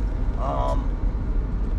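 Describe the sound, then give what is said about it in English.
Steady low road and engine rumble from inside a moving car in traffic, with other cars cutting in front, continuous and fairly loud, with a brief tonal sound rising above it for a moment early on. “Man, these people are just cutting in front of me. If you would see this traffic, people, that's ridiculous.”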